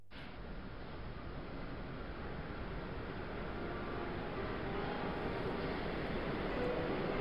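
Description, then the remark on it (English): A train arrives at a station platform, rumbling in with a steady, dense roar of wheels and machinery that swells gradually louder as it approaches, with no voices over it. “There's your train.”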